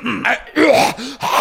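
A person fakes a cough: four quick, raspy, throaty bursts in a row, loud, each with a rough voiced edge, with no talking in between.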